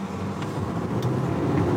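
A car's engine rumbles steadily, its low drone swelling slightly as the car pulls away from a toll gate on a green light and picks up speed, with no voices present.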